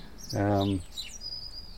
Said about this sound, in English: And they're all sparrows that we can hear now, is it? Yeah, all that chip, chop, chip, chip, chip. That's house sparrows.